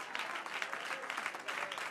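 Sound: audience clapping hands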